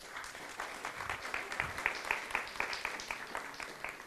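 An audience applauds a woman invited up to tell her story, many hands clapping in a dense, steady patter of sharp bright claps that holds at an even, moderate level throughout, with no voices standing out.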